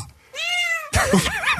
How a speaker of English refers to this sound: wait, is this the one with the meow at the end? Man, that's just awesome right there.